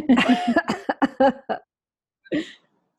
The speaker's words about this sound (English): I've got a bit of a cough this morning.